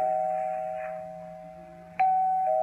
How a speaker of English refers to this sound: I rang the bell. It kept ringing and ringing. No one answered.